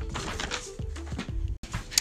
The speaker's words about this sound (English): So I am going to go down the list and read the things that I said. Sorry if you're hearing the paper noises, you know, it just adds to the effect of everything.